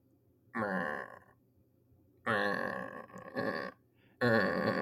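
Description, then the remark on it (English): A goat, after being injected with an air bubble from a hypodermic needle, lets out a series of loud, strained, gurgling groans, four raspy bursts with short pauses between, harsh and throaty like a death rattle, with no talking. “are we hearing the death rattle of your goat?”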